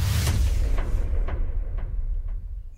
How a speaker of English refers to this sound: Nice. I don't remember hearing that echo, dude. I keep turning it off. This time I'm like, dope. You know, I'm going to leave it on.